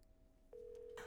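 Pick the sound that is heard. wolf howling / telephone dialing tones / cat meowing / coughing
telephone dialing tones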